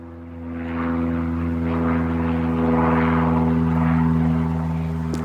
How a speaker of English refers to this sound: So what the plane drone is telling me, there's something ominous going on. anyway, sample that, guys. That's a good one.